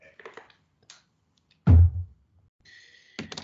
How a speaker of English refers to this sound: Oh, that's my door. Hold on.